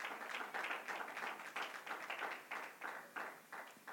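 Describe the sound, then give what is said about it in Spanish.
An audience applauds the Lord with dense, steady clapping that falls into a loose rhythmic pulse of roughly two beats per second, continuing without speech over it. “Dele un aplauso al Señor, porque Él viene pronto.”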